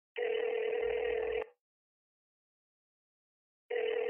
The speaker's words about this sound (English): Trevor picks up his phone and calls his friend, Malik.